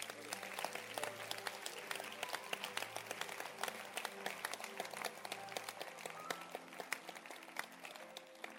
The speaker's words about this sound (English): Can you clap your hands for this book?